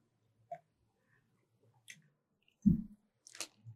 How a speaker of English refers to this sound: All right. And then sip.